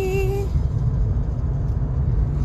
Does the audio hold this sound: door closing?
no